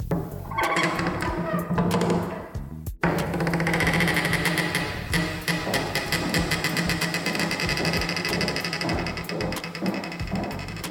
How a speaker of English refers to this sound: But please, allow me to give you a sonic idea of the majesty that this new entrance imparts on my home. Here, let me open the door.